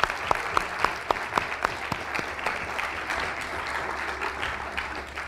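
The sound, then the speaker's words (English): People at a Cato Institute event clap for a birthday, starting with a few sharp, distinct hand claps that quickly blend into a steady, dense wash of applause, moderately loud. “So a round of applause.”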